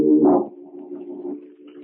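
Low, hooting bird calls at a marsh, soft cooing tones that swell near the start and then carry on steadily, moderately loud, with no talking.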